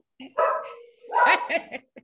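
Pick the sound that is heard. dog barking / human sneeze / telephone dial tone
dog barking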